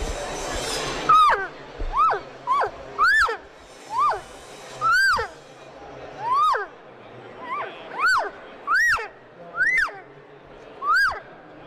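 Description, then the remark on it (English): About a dozen short, nasal cow elk mews made on a double reed diaphragm game call, each sliding up in pitch then dropping off, repeated in a steady rhythm with brief pauses between. “So you can get some nice cow sounds with our double reed there, and I'm using the double reed diaphragm right now,”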